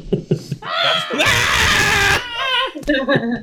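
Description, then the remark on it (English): A voice imitates a frightened child's scream: a few short, breathy syllables building into a loud, strained wail that holds for about a second, then breaks into sobbing, whimpering gasps. “she sees Sigourney Weaver, she's freaking the fuck out. Screaming.”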